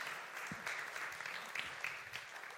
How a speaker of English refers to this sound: You can clap for them if you want. If they come up.